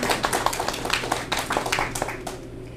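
A crowd at the Brew House applauds the venue's owner for a few seconds, a dense patter of many hands clapping at a steady, moderate loudness that begins to thin out toward the end.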